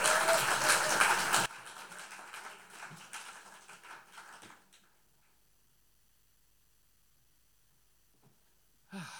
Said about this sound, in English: So, ladies and gentlemen, can I have a big round of applause, please, and welcome onto the stage, ….